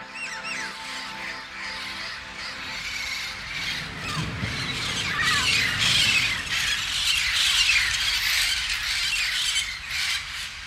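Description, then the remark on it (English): Harsh, raspy bird squawks repeat loudly, overlapping in a noisy burst that carries on for several seconds with no talking. “So, if they shout at you from the ground, little bird, fly proud.”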